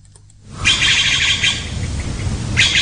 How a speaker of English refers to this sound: That's blue jays. Blue jays in the morning.